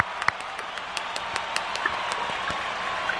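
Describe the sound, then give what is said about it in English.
A steady wash of applause celebrating the passing of a pilot's skill test, from a sizable crowd, dense and hissy with scattered sharper individual claps popping out, sustained at an even moderate level throughout with no talking. “I need to do the old applause thing here.”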